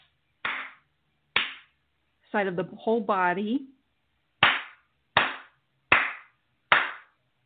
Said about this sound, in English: I'm going to do some clapping, clearing on that side of the head.